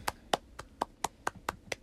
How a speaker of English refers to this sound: Timmy's not clapping with me, but okay.